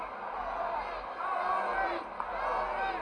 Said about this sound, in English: Crowd beginning to chant, Tony, Tony, urging Mr. USA on. They are actually getting a chant. That's nice.